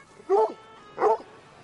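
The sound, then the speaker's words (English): A bull terrier barks twice at New York City's largest farmer's market, two short, fairly loud barks about half a second apart, with a quiet background and no talking. “Show up at the same time every week, including another bull terrier.”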